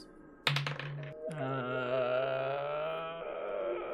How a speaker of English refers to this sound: Okay, make me a perception check. Okay, let me use my perception dice.